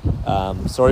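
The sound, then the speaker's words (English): Low, rumbling gusts of wind buffet a phone's microphone, blending with the sound of someone talking over the noise. “sorry for the wind.”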